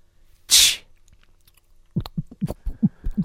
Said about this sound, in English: the sound of a fizzy drink can open. Right. I mean, like, the loads of fizzy drink cans around the world all make the same noise. They wanted to trademark that noise. And the bubbly bits.